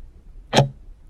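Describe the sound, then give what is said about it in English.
A single sharp, crisp clock tick stands out against a quiet, faint hum, with no other sound around it. “Clock was ticking.”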